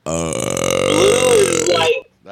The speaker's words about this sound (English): That was a good one, though. Dude, that sounded like if a fart and a burp that had a baby.